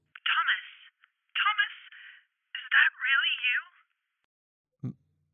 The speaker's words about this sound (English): The phone's ringing and it says Mother.